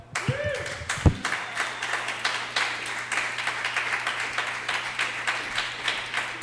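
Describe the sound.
An audience at a stand-up comedy show claps steadily for a comedian finishing his set, in a dense, even patter that continues throughout, with a few brief voices and a short tonal sound near the start.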